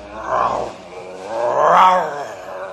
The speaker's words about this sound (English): What's that? A grizzly bear. Shoot it! You build up fire. He not bother us.